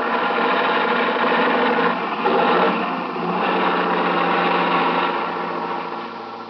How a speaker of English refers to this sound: Watch out for this truck. Yeah, he's pounding to make the hill. They always do coming across the bridge.